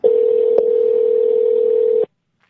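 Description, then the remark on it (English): A steady, loud telephone dial tone of an outgoing call to a Canadian phone number holds a single pitch for about two seconds, with a brief click partway through, then cuts off abruptly into silence. “We're going to call”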